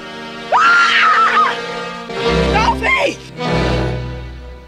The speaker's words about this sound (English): Melinda Dillon's scream is priceless